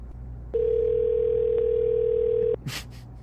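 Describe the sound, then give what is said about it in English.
A single steady telephone ringback tone on an outgoing call lasts about two seconds over a low background hum, then stops, followed by a brief soft rustle or click. “It's ringing.”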